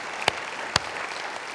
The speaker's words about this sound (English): And I just want to take a moment to say, we have a phenomenal staff. We really do. We clap for that too.